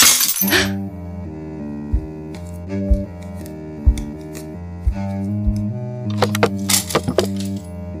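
The glass of a picture frame shatters sharply at the start, then a steady droning music bed with soft low thuds follows, and a cluster of bright clinking, breaking-glass bursts returns near the end.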